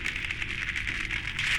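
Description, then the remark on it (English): A steady, sizzling electrical crackle with a bright hissing hum and irregular snapping pops scattered through it, continuous, with no voices, as tendrils of gray-colored energy snake from a raised arm. “there was a crackling electrical noise as tendrils of gray-colored energy began to snake from it.”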